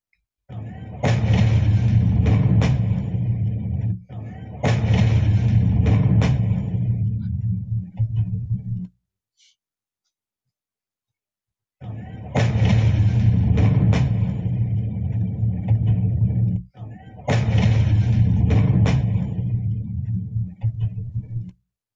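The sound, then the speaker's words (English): Loud, deep explosion blasts from played video footage with heavy rumbling, two big booming bursts back to back, then a few seconds of silence before the same pair of blasts plays again. “There goes the sound of the blast first on footage.”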